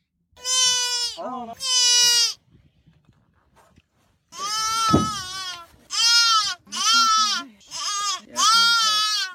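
A young fawn (baby deer) bleats loudly: a couple of wavering, nasal cries, a short pause, then a run of five more insistent calls in quick succession.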